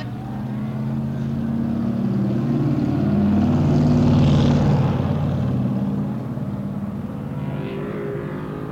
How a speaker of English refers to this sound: That was a car going through the pits.